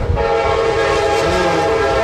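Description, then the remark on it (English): A short Amtrak passenger train's horn blares loud and sustained, its steady chord sounding over the heavy rumble and rattle of the train passing by. “Here comes the train, y'all.”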